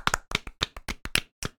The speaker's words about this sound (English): Let's give him a round of applause. Jesus Christ. Stop now. A lot of applause. Stop right now. Why are you clapping for so long?